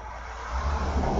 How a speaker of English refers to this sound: Oh, so many cars. Yeah. At least that wasn't a garbage truck like before. I was just hearing them all in the background of that talk, and I was like, oh, God.